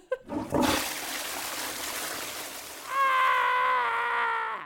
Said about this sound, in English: the first mainstream film to show a toilet being flushed is Psycho